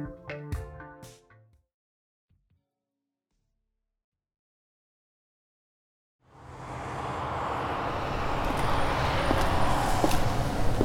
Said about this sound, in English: As you walk down the steps into the National AIDS Memorial Grove in Golden Gate Park, the traffic and bustle of the street fade away.